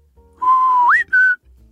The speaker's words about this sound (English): When you hear that whistle, it means we've brewed a new batch of Sparhawk. Come and get it.